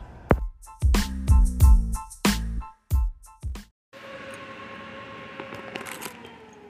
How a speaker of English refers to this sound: Good morning, and welcome to the Black Mesa Transit System. This automated train is provided for the security and convenience of the Black Mesa Research Facility personnel.